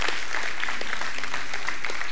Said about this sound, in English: Can y'all give our kids a hand clap this morning? Just celebrate them. Celebrate them for who they are.